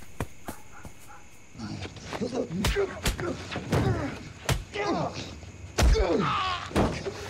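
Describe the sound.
Heavy, loud thuds land in irregular, rapid bursts as a group of boys beat a man they chased and tackled, mixed with pained groans and strained grunts from more than one voice as the blows keep coming.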